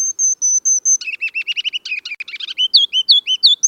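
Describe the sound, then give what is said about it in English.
A ruby-crowned kinglet, a bird about 4 inches long weighing about a quarter of an ounce, sings: a few thin high notes, then a rapid chattering run, ending in loud, bouncy repeated phrases, all crisp and clear with no other sounds. “That mile of music comes from a bird 4 inches long and weighing about a quarter of an ounce.”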